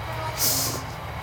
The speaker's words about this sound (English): oh, that's another big noisy train. Oh, I can see the, oh, that's the freight train. There's always a freight train that goes past about twice a day.